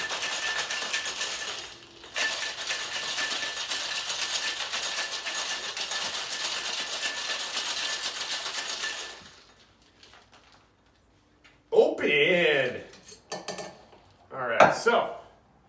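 A cocktail shaker with ice is shaken by hand, rattling hard in a steady, dense clatter for several seconds, pausing briefly once, then goes quiet before a few separate clinks and glassy knocks.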